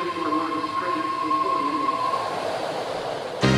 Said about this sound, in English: The Bay Area sounds like a BART train every 2 minutes.